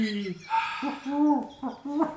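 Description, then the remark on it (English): A person imitates an owl, producing a few drawn-out, wavering hoots in quick succession, fairly loud with a breathy, sing-song quality. “You sound like an owl.”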